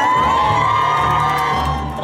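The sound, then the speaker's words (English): A crowd cheers loudly and steadily for about two seconds, a dense wash of shouts and high whoops with no break, easing slightly at the very end; the cheer is not quite as loud as the one for William and Kate. “There was a cheer.”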